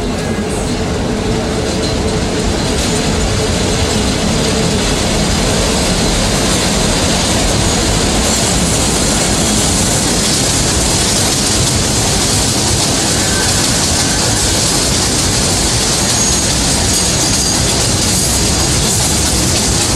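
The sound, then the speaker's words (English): A Brooklyn-bound 3 Express subway train, heading for its last stop at New Lots Avenue, clatters along the tracks in a loud, steady roar with rattling wheels, continuous for the whole stretch, with no voices. “A Brooklyn-bound 3 Express train.”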